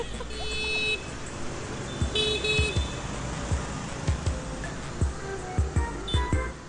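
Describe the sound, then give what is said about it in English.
Busy street traffic in Hanoi rumbles by, with several short, high car horn toots sounding at intervals over the steady roar of passing engines. “However, if there was a whole class of children, the traffic would probably come to a bit of a stop.”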